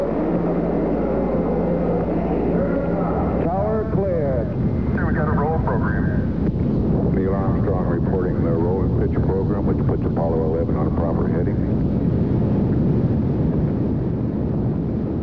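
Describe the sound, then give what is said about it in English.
A Saturn V rocket lifts off carrying Apollo 11 on July 16th, roaring with a deep, loud and continuous rumble that stays steady for the whole stretch, while a voice talks over the noise partway through. “The massive Saturn V rocket sent Apollo 11 roaring into space on July 16th,”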